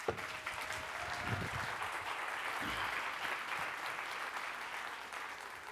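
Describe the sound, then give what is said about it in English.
Steady audience applause at a church service as a man is invited up to the front fills the whole stretch, a dense wash of many hands clapping at an even loudness, with a couple of faint low thumps early on and no speech over it. “Now, the best part of what I just had you do was applaud for no reason”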